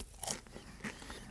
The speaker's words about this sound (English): You gotta cut your chewing out.